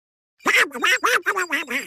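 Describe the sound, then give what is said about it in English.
Donald, trying to answer, speaks only in duck quacks, giving about five quick nasal, buzzy calls in a steady, choppy rhythm after a moment of silence, moderately loud with no ordinary talk. “And all he does is speak duck.”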